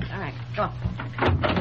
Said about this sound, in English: Get in the bathroom. Close the door.